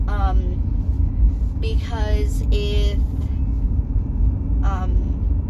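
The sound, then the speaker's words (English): A steady, loud low rumble of a car being driven on the road fills the whole stretch, with the driver's voice speaking in short bursts over the constant road and engine drone. “And let me know if you preferred me sitting in my room talking, or if you like this whole on the road, or if just the sound of the car back in the background bothers you.”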